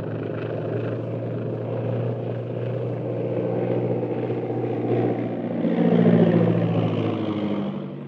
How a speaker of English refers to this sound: If we weren't in radio communication with Yangtze at this very moment, guiding him down, I'd swear it was a government scout plane on patrol duty.